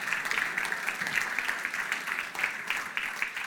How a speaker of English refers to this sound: I wonder if we could now give Tim a round of applause.